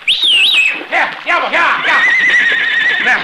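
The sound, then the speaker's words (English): A horse, Diablo, whinnies loudly while swimming in a river current, a high, wavering neigh that breaks into snorting, shuddering bursts before trailing into a long, strained cry. “The horse cannot swim with anyone on his back, Bobby.”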